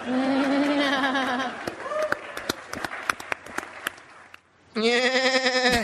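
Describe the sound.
A voice imitates a goat with two long, wavering bleats, one at the start and one at the end, separated by a stretch of scattered, sharp claps and clicks.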